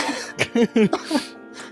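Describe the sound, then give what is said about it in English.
A quick string of forced, throaty coughs, five or six short bursts, with a voiced, staged quality like someone coughing on purpose. “I'll try and cough when the noise happens.”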